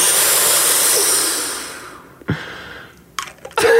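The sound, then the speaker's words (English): An asthma inhaler puff: a steady, airy hiss lasts about two seconds and then fades, followed by a few short, sharp clicks and scuffs. No one speaks. “That's I know that's not a puffer. That's what is my puffer.”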